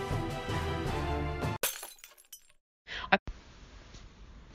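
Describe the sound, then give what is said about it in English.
Music plays briefly, then cuts to a sudden, loud crash of glass shattering, with scattered tinkling shards trailing off before a short burst of noisy clatter and a low hiss. “Let's bust through that glass ceiling.”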